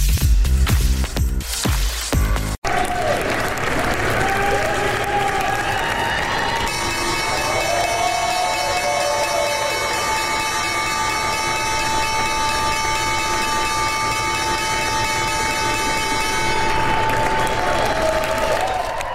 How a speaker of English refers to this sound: you are watching the opening bell downtown at the New York Stock Exchange.